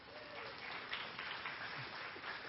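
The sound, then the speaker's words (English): A church crowd applauds steadily for a man who fetched the speaker a cup of water, a dense wash of many hands clapping at once, holding a fairly even, moderate loudness throughout with no voices standing out. “Round of applause”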